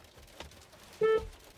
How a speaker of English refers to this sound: I've never heard the horn.